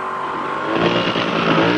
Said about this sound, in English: Now a mass of police cars responding to the Riddler's phony signal rush into his trap.